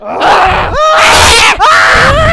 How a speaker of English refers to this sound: Okay, there's just gonna be a lot of screaming.